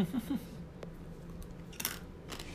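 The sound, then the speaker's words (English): A light-roast coffee bean, still with some parchment on it, is bitten and crunched, giving a few sharp, brittle cracks spread over a couple of seconds against a quiet, low background hum. “Nice and crunchy.”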